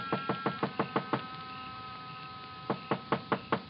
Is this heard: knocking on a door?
yes